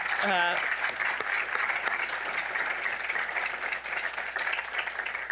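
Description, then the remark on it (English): An audience gives a sustained round of applause for the first panel, dense and steady clapping filling about five seconds at an even loudness, with a brief voice heard at the very start. “And let's give another round of applause to the first panel.”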